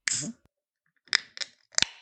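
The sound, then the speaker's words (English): A beer can is cracked open: a short fizzy hiss, then a pause and three sharp, bright metallic clicks from the tab, fairly quiet with no talking. “I'm gonna pop this open.”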